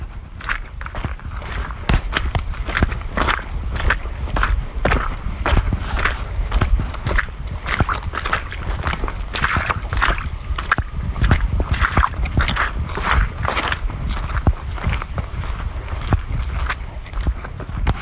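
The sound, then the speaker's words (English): Steady footsteps squelch through mud by the Muscatatuck River, each step a soft wet slap in an even walking rhythm, with a low rumble of wind and flowing water behind. “You've been listening to Footsteps in the Mud by the Muscatatuck River.”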